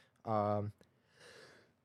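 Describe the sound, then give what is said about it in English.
A single sneeze: a loud voiced intake-like cry followed by a softer, breathy burst of air, then quiet. “Bless you, thank you.”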